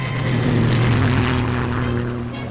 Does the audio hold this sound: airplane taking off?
yes